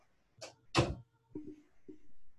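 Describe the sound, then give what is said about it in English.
A door is shut with two quick, solid thuds, the second louder, followed by a couple of softer, lower knocks as it settles. “Just a sec, let me go and close the door.”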